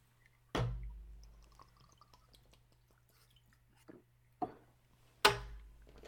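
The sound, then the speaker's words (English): Glasses clink together in a toast, one sharp ringing clink followed by two more light taps a few seconds later, with no talking. “Oh, cheers. Clink.”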